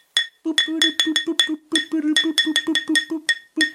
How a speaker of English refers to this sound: Well, I'm just going to go bang my pot some more. To celebrate my friend Carlos.